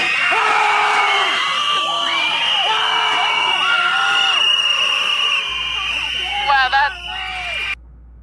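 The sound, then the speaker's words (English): A crowd of protesters screams and yells "white supremacy" together in a woman's face, loud, with overlapping shrill voices rising and falling in repeated bursts before cutting off abruptly. “Just like these demons, these just screaming in her face.”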